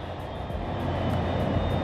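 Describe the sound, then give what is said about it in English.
A steady, loud airplane engine drones at an airport job site, a dense low rumble with a thin high whine running through it, holding constant with no one speaking. “I usually don't do that, but I did now because all we're doing is just waiting for the cans to come and we're waiting for the planes to come.”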